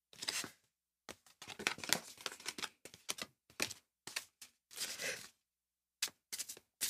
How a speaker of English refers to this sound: Just a sec, I'm still shuffling.